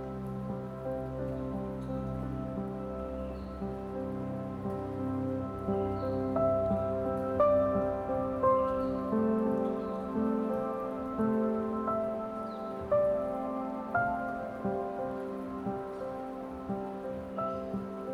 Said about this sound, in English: Let go completely and fall deeply into the comforting arms of the falling rain.